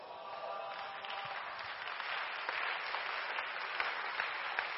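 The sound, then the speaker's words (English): A crowd claps steadily for about five seconds, a dense, even wash of many hands with no break and no voices on top, holding a fairly constant loudness throughout. “Yes, it's a very good place to clap.”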